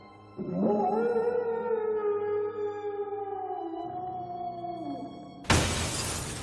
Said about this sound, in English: Something's broken the window.